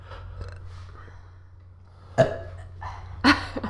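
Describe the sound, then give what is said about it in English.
Two short, throaty burps break a quiet stretch, the second louder and punchier, with low background hum and faint mumbling beforehand. “Wait, I have to burp.”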